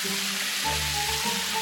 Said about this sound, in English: Hey, let's go jump in the lake. Yeah, let's do that. Water cannon!